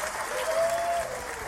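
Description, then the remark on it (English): A crowd applause sound effect greets a contestant at a mock Grand Slam final of Ping Pong Ding Dong: a dense, steady wash of clapping that holds at an even loudness throughout the short burst, with a faint tonal whistle or cheer riding above it. “The crowd absolutely love you”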